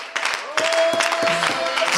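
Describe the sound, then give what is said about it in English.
A crowd clapping their hands to the Lord in a dense, steady wash of applause that starts abruptly and stays loud, with indistinct voices and a sustained tone mixed underneath. “Would you clap your hands again to the Lord?”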